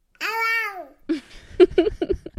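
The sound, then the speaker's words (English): A toddler, almost two years old, babbles into a toy phone while walking around the house, starting with a long, drawn-out singsong vowel and then tumbling into a quick string of short, wordless syllables with no other voices around. “In fact, my son walks around the house with it, talking into it like a phone, and he says...”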